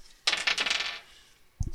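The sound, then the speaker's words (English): A bright, clattering rattle of six-sided dice tumbling across a hard surface for under a second, then a brief second clatter, fairly loud with no talking, as damage is rolled in a tabletop role-playing game. “Okay, roll damage. I have to find all the d6s.”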